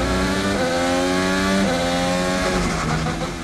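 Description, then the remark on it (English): A loud race car engine screams steadily, its pitch climbing and then dropping abruptly several times as it shifts through the gears, with no voices present. “In a Formula One or any road race, you're going to hear the car shifting up through the gears and down through the gears a lot more often.”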